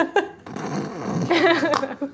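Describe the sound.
A voice imitates a character snoring after flopping onto a bed and passing out, with a raspy, rumbling drone that rises into a nasal, buzzing snort, followed by a short sharp exhale. It is fairly loud and stands alone without talk.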